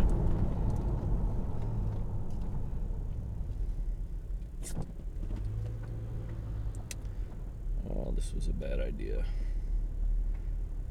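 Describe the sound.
A heavy truck rumbles with a deep, steady engine drone, a brief tonal whine partway through and a few sharp clicks. A voice briefly surfaces near the end.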